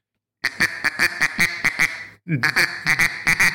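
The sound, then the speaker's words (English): A gray duck call quacks in rapid rhythmic bursts, a loud series of nasal quacks with a brief pause midway before the cadence resumes. “You know, that's a gray duck.”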